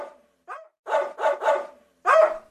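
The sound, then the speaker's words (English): A farm dog barks in a quick series of about five sharp barks, with short gaps between them and a louder final bark; no one speaks. “I ran away with the lettuce in my mouth just in time because I heard a farm dog wake up and start barking.”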